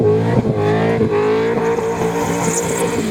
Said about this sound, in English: Vision obtained by Nine News shows drivers performing burnouts in the Eastlink tunnels.